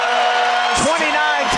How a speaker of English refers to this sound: 29-25, Utah with a lead of 4 with 50 seconds to go, and the crowd comes alive here at the Huntsman Center.